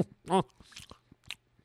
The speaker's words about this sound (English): I know it's gross, people chewing in your ear, right? But it's a cookie. It's one of those Pepperidge Farm Milano. Pardon my chewing. Mint chocolate cookies.